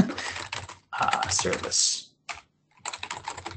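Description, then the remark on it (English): Rapid clicking of a computer keyboard, not a Mac keyboard, being typed on while entering a sudo Docker command, in several quick bursts separated by brief pauses, fairly loud and crisp. “I'm not using a Mac keyboard. I know the Mac. I know the shortcuts.”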